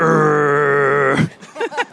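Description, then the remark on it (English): A voice imitates the engine growl of a Dodge Ram pickup truck with a steady, buzzy drone held for just over a second, then breaks off into a few short voiced sounds. “What sound would this car make? Something like that, like a growl.”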